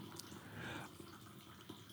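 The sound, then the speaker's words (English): A faint, steady trickle of coffee being poured into a color-changing mug, with soft dripping and a slight swell in the pour partway through; no one speaks. “Why don't you go ahead and pour some coffee in that mug?”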